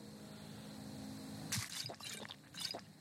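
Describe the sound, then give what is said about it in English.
A video game potion-drinking effect: a quick run of liquid sloshing and gulping bursts over a steady low background hum, fairly quiet, with no one talking. “I need to take a potion.”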